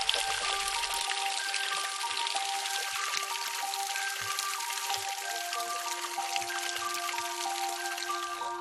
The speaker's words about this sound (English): Then the vapor cools down and turns to clouds and fog. The dew and water droplets come together and become streams.